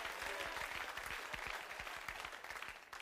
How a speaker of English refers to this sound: We're a Baptist-costal kind of church here, folks. We need some amens. We need some hand claps. We need some agreement. Come on.